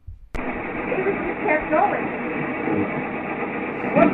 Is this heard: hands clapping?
no